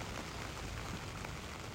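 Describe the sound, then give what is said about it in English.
Steady rain patters on a floorless tent shelter overhead on a cold night, a dense, even hiss of drops with no pauses and no voices. “Kind of sounds like it's letting up a hair, but who knows what it'll do.”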